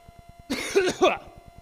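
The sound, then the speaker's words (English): A raspy throat-clearing cough to clear a frog in the throat, in two or three quick harsh bursts, fairly loud, heard on its own with no talking, over a faint steady low hum. “oh man, I'm gonna get a frog, here we go.”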